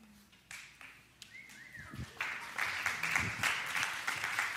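A single short whistle from someone in a church audience rises and bends over a few scattered claps, then the crowd breaks into steady, loud applause that carries on to the end.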